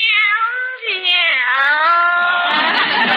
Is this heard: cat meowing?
yes